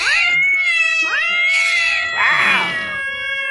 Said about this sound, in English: A cat keeps slamming into the food dispenser. Mm-hmm. Let's see if I have the cat drop.